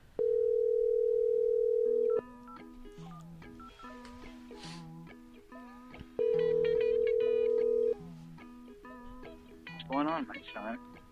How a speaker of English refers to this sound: I'm calling him right now.